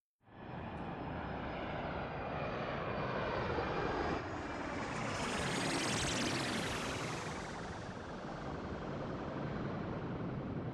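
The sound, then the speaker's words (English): The engine of Frank's jet roars steadily, its broad rumble joined by a high whine that climbs and then falls away midway through. No voices are heard. “Now somebody hand me the keys to Frank's jet, because this woman's driving.”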